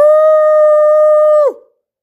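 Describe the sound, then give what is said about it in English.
A person imitates a wolf howl: one loud, sustained steady note held for about a second and a half, then sliding downward and fading out, with no other sounds. “I already know I'm part wolf.”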